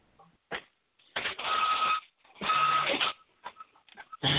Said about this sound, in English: Is that your printer, …? Yeah, I'm printing papers and documents.